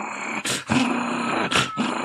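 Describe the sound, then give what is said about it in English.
A voice imitates the slow, low, menacing growl of Mickey, a character behind a bar, rumbling steadily for about two seconds with two sharp, breathy rasps breaking through, fairly loud with no other sounds. “He's like slowly growling.”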